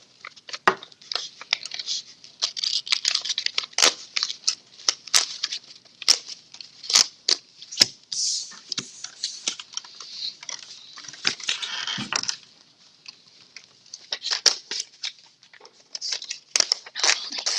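Paper is crumpled and torn, a steady stream of crisp crinkling and rustling with sharp snaps and a brief pause near the middle. No one speaks.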